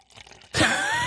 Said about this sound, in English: Dude, are you actually draining that bottle? You're going to give me some. I just poured you some. You just poured, hold on, just finish it up, top it up.